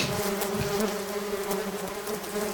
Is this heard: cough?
no